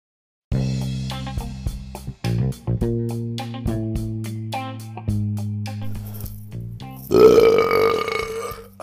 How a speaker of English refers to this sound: Burp that Maury away